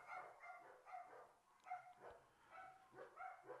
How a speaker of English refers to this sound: You hear those dogs?